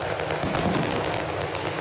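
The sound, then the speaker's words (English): Fireworks explode over downtown Los Angeles in a dense, continuous barrage, with rapid crackles and pops layered over a deep rumble. The sound is loud and sustained throughout, with no pauses between bursts. “I gotta hear it explode. Over to watch the fireworks in DT LA.”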